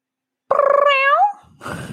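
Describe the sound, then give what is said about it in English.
A person imitates the rolling trill of Nyx, a pet cat: one short, voiced chirrup, fluttery at first, then rising in pitch at the end. A brief rustle follows. “She rolls her R's.”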